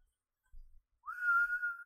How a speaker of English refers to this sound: I want to whistle. This raisin makes me want to whistle.